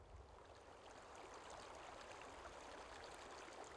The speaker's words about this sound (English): Of course, occasionally someone passing over Cromford Bridge after dark will hear the wind rustle in the trees. The roar of the river through the wooded valley.